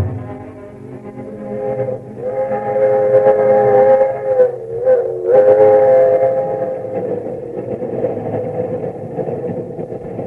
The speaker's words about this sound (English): Well, here's my train.